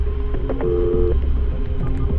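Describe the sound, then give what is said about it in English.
A few short electronic phone keypad tones, with one held longer, beep over a steady low rumbling hum as someone dials 911 on a phone. No one speaks. “And I was shaking, so I immediately grabbed my phone, got out of the car and called 911, and I was totally in shock.”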